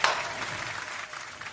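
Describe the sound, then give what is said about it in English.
A short burst of crowd applause, dense and steady clapping that starts abruptly at full volume and holds for about a second and a half, with no voices. “The crowd agrees.”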